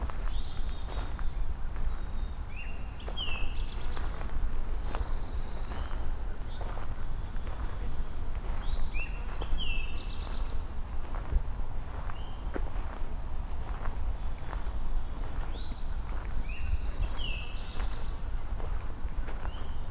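Pine warbler and eastern towhee songs repeat over steady outdoor ambience, with crunching footsteps walking throughout and no talking.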